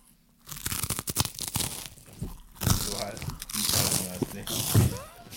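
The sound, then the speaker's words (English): A crinkly Cheetos snack bag being torn open and crunched, with sharp crackling bursts scattered across several seconds while a voice murmurs in the background. “Oh, fucking Cheetos, man. This is sick.”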